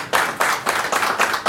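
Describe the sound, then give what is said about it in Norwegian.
Hands clap in a steady rhythm, about six bright, sharp claps in quick succession, loud and with no talking over them, like a short burst of applause. “Fint, applaus, det fortjener en applaus.”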